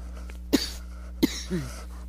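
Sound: coughing and throat clearing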